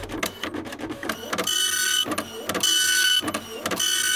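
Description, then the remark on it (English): A dot matrix printer prints in rhythmic bursts, a harsh buzzing rasp alternating with short clunks as the print head sweeps back and forth, loud and steady with no voices. “Oh my gosh, so finally I figured out how to get the dot matrix printer to work.”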